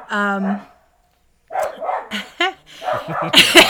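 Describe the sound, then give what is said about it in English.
A dog barking at a cat through a window lets out a single drawn-out, tonal bark, followed by a brief pause and then people talking, with a few more yips mixed in among the voices. “Sorry, your dog agrees.”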